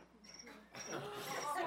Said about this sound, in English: it's just a cricket, I'm sure.